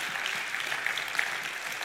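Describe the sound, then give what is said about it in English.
A church audience in Jacksonville, Florida claps their hands for God in a dense, continuous burst of applause, many overlapping claps forming a bright, steady wash with a few sharper individual claps standing out. “Can you give God a hand clap? Give him a hand clap.”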